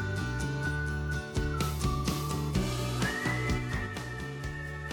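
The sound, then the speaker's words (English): A clear whistled melody, part of a film soundtrack, rides over a steady musical backing with a pulsing beat, the whistle holding long tones and sliding between notes at a moderate, prominent level. “Whistle start. There we go. This is part of the soundtrack, guys.”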